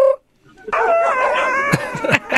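A rooster crows loudly in one long, harmonic cock-a-doodle-doo lasting nearly two seconds, preceded by a brief cluck, with a few sharp clattering hits near the end.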